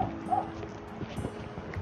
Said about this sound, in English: Oh God, can you hear? There's a dog in the far distance barking loud.